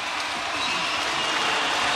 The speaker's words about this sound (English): Strip hoed by Cleveland, but it will be a Taipans ball, and this crowd is going nuts.